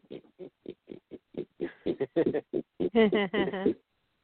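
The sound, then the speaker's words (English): A voice imitates a pig, starting with a quick run of short, evenly spaced grunts that build into louder, squealing oinks toward the end, with no other talking. “And we do a pig.”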